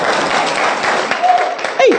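Steady, dense clapping for about two seconds, rapid overlapping claps at an even loudness, with a short sustained tone and a brief falling vocal whoop near the end.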